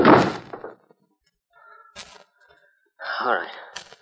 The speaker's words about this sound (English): Then you drag him in and kick the door shut.